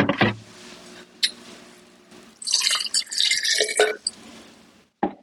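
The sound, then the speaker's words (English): Vinegar and distilled water are poured into a bottle in a splashy stream lasting about a second and a half, after a few small clicks and taps. No one speaks. “I'm going to be adding a little bit of vinegar to this and then topping it off with my distilled water.”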